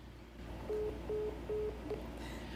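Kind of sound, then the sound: signal or alarm, phone call hang-up tone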